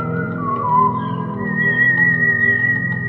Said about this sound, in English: So anyway, you just whistled the little tune. Yeah, you can play the tune. You can play the clip of the tune.